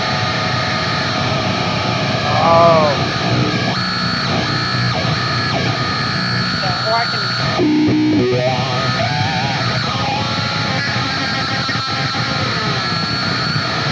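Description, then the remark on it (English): A loud, dense wall of distorted guitar effect noise, looped with a wah in a heavy context, sweeps and wails, forming a chaotic, roaring texture like a dinosaur growl, with brief spoken words near the start. “then when I use it in a heavy context, it sounds like a fucking crazy noise. It's like a dinosaur or something. But let's hear this dino roar.”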